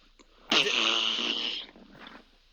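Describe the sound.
A single loud, buzzy raspberry blown with the mouth, imitating a fart, lasting just over a second before trailing off into quiet.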